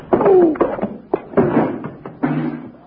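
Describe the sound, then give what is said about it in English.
A short flurry of heavy punches lands in quick succession in a fistfight, four close, thudding blows with scuffling between them, the last one, thrown by Bill, knocking a man out. “Bill, you knocked him out.”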